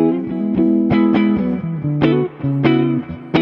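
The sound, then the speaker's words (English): An electric guitar plays a short riff of sustained notes and chords with sharp picked attacks, loud, with a clean, full tone and no voices, played through the clean boost side of a pedal, which adds no color in this setting. “And then on this side is a that's a clean boost.”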